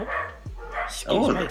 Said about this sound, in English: Your dog's giving a review of the film.